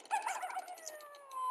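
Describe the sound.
A person imitates a coyote howl: a warbling, wavering cry that settles into one long, high, steady note drifting slowly downward, sustained for over a second without any talking.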